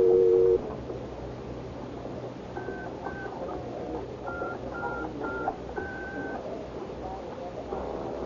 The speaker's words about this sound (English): I crossed to the phone booth, and following instructions, I picked it up to listen for the dial tone before I dropped the dime in.